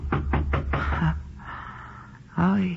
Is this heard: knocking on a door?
yes